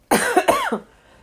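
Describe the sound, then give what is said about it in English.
A single loud cough with a raspy, harsh burst that breaks into a couple of quick hacking pulses before trailing off into quiet. “I'm so over this cough.”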